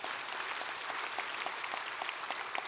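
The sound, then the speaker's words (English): Steady applause from an audience at a service, many hands clapping at once in a dense, even wash of sharp claps that holds at a constant level for a few seconds without any voices. “I mean, that's three claps.”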